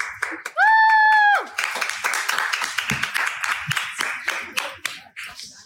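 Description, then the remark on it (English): An audience breaks into steady clapping from many hands for a woman who has just finished speaking, loud and continuous for several seconds, with a brief sharp whistle cutting through at the start. “And they clapped for her.”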